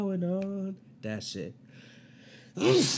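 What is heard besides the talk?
sneeze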